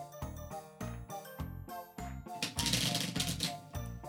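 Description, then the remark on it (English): Rapid, crisp clicking and fluttering bursts from a deck of cards being shuffled, repeating in short bouts before a longer riffle, fairly loud over a faint tonal background. “let's get that good shuffle that Ben can't hear because of Discord”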